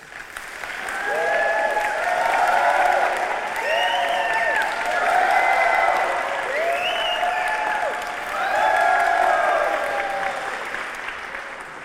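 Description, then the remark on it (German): An audience does an applause wave: sustained applause that swells and fades in repeated waves, rising and falling in loudness several times as the clapping rolls across the crowd, with no talking over it. “Wir machen hier so eine Art Applaus-Laola.”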